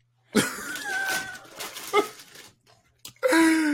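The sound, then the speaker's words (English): A person choking and coughing on a Doritos chip caught in their throat, with harsh, strained hacks and wheezy, high-pitched gasps between them, a short pause, then one more loud, rasping cough. “One of the Doritos got caught in my throat.”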